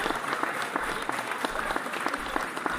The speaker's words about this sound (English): I think that deserves a, clap.